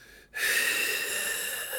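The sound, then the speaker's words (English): A person imitates heavy, raspy guttural breathing, the weird guttural breathing Kendall did in the Succession premiere: after a brief pause, one long, loud, noisy breath drawn out, with no talking. “Let me do the weird guttural breathing that Kendall was doing in the Succession premiere.”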